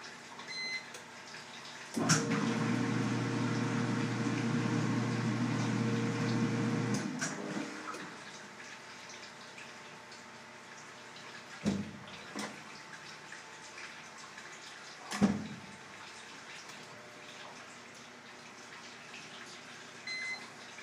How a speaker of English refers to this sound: Start. I think it's filling up with water right now.